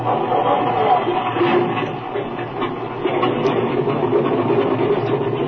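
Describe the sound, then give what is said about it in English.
A propeller aircraft engine, already warmed up, runs at a steady, loud drone, its dense rumbling roar continuous throughout, with no voices. “The engine's been warmed up already.”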